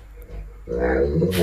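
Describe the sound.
After a brief quiet moment, a dog, the 'Where Are You Going Dog' from a Talking Pet of the Week feature, lets out a drawn-out, warbling vocalisation that rises and falls like someone saying 'where are you going?', fairly loud, ending in a sharper breathy burst.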